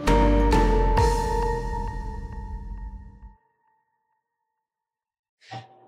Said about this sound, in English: Sorry, that's my kids ringing the doorbell 100 times. I'm sure you can hear that.